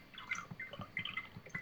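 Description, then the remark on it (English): Apple juice being poured into a glass, a quiet gurgling trickle with bubbly splashes rising and falling in uneven pulses, heard on its own without any talking. “He's pouring himself an apple juice.”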